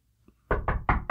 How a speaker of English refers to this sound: Why are you knocking so hard?